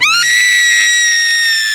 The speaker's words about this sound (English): Jason looks up in the direction of the scream,